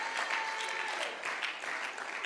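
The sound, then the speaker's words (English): A church audience claps their hands for the Lord in a dense, continuous burst of applause, many overlapping claps at a steady, fairly loud level with no pauses. “Clap your hands together for the Lord.”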